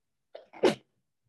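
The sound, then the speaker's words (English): A single loud sneeze with a short breathy intake followed by a sharp explosive burst, then silence. “Bless you. You're gonna have to cut that out, please.”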